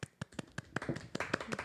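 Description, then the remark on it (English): A short burst of live applause: a handful of hands clapping in quick, uneven claps that blur together midway, moderately loud and sharp, lasting under two seconds. “Live applause.”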